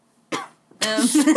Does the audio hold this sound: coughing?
yes